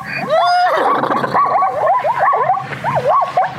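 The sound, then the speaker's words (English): A zebra's barking call: a rapid run of high, yelping barks with a rising-and-falling squeal to each, repeated many times, loud with no voices. “Strange Sound of Zebra”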